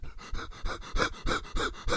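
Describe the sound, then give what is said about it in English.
Rapid, breathy panting, about seven quick huffs in two seconds with a steady, urgent rhythm, like someone hyperventilating. No words are spoken. “I need a paper bag.”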